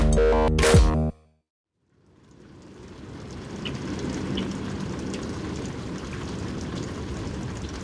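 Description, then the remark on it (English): Steady rain from an out-of-season December thunderstorm in New England patters down, a dense continuous hiss with scattered droplet taps, rising in after a brief tonal musical note and a moment of silence. No one speaks. “Almost no snow here in New England, but lots of rain, thunder, and lightning, which is definitely unseasonal.”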